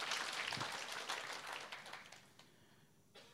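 A crowd of people clapping together at the speaker's request during a Christian sermon, a dense, steady wash of applause that gradually tapers off and fades within a few seconds, with no voices.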